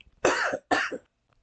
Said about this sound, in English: Didn't want to cough in the mic.